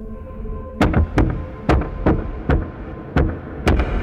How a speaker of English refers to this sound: And besides, in this neighborhood, front doors are always open, so you don't have to knock. Why would he be knocking?